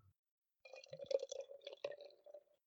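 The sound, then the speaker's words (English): Beer glugs and splashes steadily into a glass for about two seconds, a bubbly gurgle that fades out at the end, with no talking. “Oh, it's just the sound of that pouring away.”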